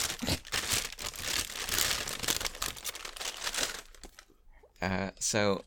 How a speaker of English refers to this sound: We get the crinkly, crinkly bag tag.